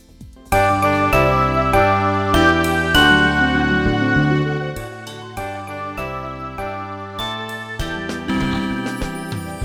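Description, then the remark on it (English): Bright bells ring out a steady, melodic tune, each chime striking in a regular rhythm with long ringing overtones, loud with no voices. “Ring info bells.”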